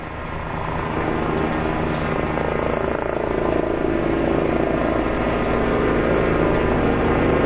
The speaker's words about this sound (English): You can hear the helicopter. That is Flight for Life helicopter doing a flyby. Passes over the church. Another show of respect, another tribute to Peter Jerving.